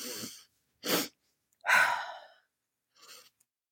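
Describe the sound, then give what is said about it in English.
A person demonstrates a double inhale: a quick, sharp intake of breath followed by a longer, deeper pull of air, framed by softer breaths. The breathing is clear, with no talking. “Yeah, that's the kind of double breath intakes where you take a breath and you might breathe in as deeply as you think.”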